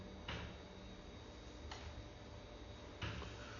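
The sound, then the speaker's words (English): A few soft clicks and knocks of a door being closed, three brief separate sounds spread over a few seconds, faint. “You don't have to close the door. You could leave it open.”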